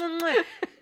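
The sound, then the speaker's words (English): A single vocal imitation of a growl: one short, voiced rumble that slides downward in pitch, followed by a brief breathy puff, with no other sounds around it. “And that growl thing I just did, guys, was a growl.”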